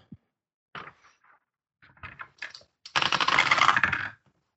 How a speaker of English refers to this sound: Dice rolling.